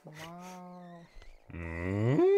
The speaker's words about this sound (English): Listen. It's a bee of some sort. A cow. I'd say a cow.